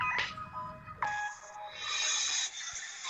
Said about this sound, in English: Another phone call?